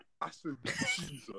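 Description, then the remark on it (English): A voice imitates a man's cough: a short, raspy burst of throaty noise after a couple of quick vocal sounds, lasting under a second. “Man's coughing like that.”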